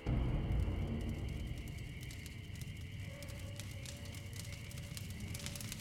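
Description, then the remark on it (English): A fire crackles steadily with scattered sharp pops and snaps over a low, constant roar. The sound is continuous, with no voices. “When he woke up, the air was crackling.”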